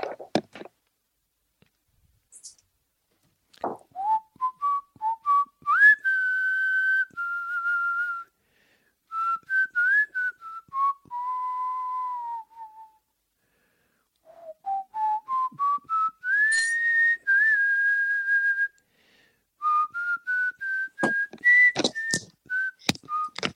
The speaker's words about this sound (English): What you whistling, …? Just a little tune.